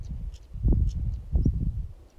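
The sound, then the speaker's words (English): Sea waves lap against rocks down below on a sunny day in two low, splashing surges over a steady murmur, while a couple of birds of unknown kind give a few faint, brief chirps above, as if talking to each other. No one speaks. “I can hear the waves lapping up against some rocks down below, and there's some birds, I don't know what they are, but that noise there, you might be able to hear, there's a couple of birds talking to each other.”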